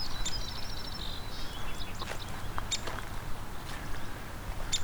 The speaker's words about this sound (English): Is the northern cardinal singing? And these short little, there's the northern cardinal again.